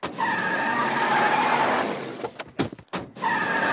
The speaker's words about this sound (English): they have a Ben-Hur-esque scene where Homer chases down the carriage in the half-destroyed family car, runs them off the road, and picks up the family.